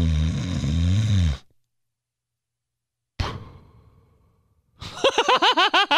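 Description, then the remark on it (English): A voice imitates a father's loud, strange snore: a rough, buzzing vocal rasp, then silence, a sharp sudden burst that trails off, and a final pulsing, warbling blast. “My dad like created a new snore one time. My dad invented his own snore.”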